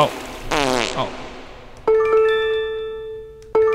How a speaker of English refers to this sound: That's a notification sound effect.